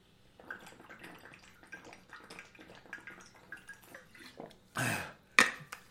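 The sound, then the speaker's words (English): Water trickles and splashes unevenly for several seconds, then gives a brief louder gush followed by a sharp clack, like a container being set down. “This extra water.”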